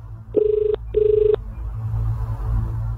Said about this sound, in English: Phone's ringing. I'm not picking it up.